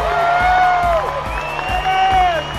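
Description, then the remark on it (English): A large stadium crowd at GIO roars with sustained cheering and whistling in appreciation near full time of a Canberra Raiders match, the Raiders leading 32 to 18, a dense wash of voices with scattered whoops rising above the steady din. “You hear the crowd.”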